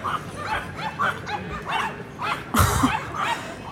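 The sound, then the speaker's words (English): Five small Pomeranian dogs yap repeatedly in quick, overlapping bursts, with a louder cluster of high barks near the end, against a steady background hum. “But like, yeah, does that, like, to be fair, that's five of those Pomeranian dogs that was always going, oh, they're not starting to bark now.”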